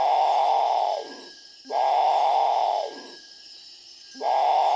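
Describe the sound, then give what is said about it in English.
A Great Potoo gives deep, rough, groaning calls that fall in pitch at the end, repeated about every one and a half seconds in a steady rhythm with short gaps between. “One of the exotic birds, for example, is one called the Great Potu, which comes from Central and South America.”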